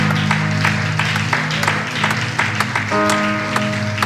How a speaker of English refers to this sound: Isn't it good to be here? Amen. Clap your hands if it's good to be here.